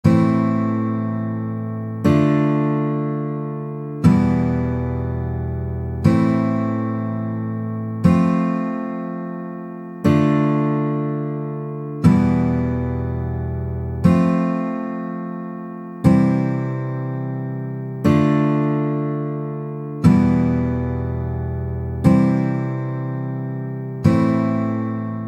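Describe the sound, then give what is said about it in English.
Basic open chords in standard tuning strummed on a guitar, a steady progression of about a dozen ringing chords in which the tonic chords change from minor to major, each struck firmly every two seconds and left to fade before the next. No one speaks. “I'm going to use basic open chords in standard tuning”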